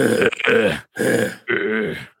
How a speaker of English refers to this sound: It's just her heavy breathing.